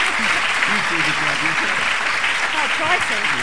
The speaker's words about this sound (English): So I really would just like another round of applause for all of our candidates for taking part. Thank you very much.